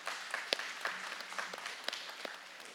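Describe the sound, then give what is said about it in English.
An audience applauds for the mothers on Father's Day, a dense crackle of many hands clapping steadily, with a few sharper individual claps standing out. No voices are heard over it. “I know today's Father's Day, but moms, just want to give you another round of applause.”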